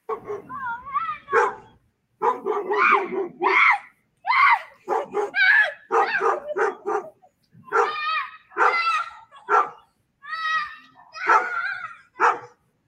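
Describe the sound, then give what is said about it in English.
A dog, scared by a boy crawling around in a Megan Halloween costume, barks and yelps excitedly in a rapid series of loud bursts, some drawn out into whiny cries, continuing for several seconds. “You've been scaring a dog, it looks like.”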